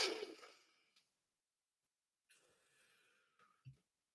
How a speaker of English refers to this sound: And I start taking deep breaths in.